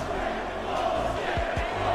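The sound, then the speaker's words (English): A large arena crowd at a fight loudly chants its displeasure after a confusing knockout, a dense, steady wall of voices, loud and continuous with a few swelling shouts rising out of the noise. “It was just confusing, and the crowd began loudly protesting, and literally as they began chanting their displeasure, that's when the replay dropped.”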